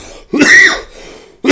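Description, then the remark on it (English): A sharp cough after a light hit from a vape pen, followed by a rough throat clearing, with a second cough bursting in at the end. Loud and harsh, with no talking. “Even that light hit made me want to cough.”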